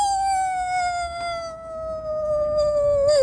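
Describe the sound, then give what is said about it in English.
A person imitates a wolf howl as a Halloween sound effect, with one long, steady, high-pitched note that slowly slides downward and wavers at the very end. It is fairly loud, with no talking. “A wolf howls in the distance.”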